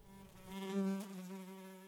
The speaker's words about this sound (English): And off the gnat flew.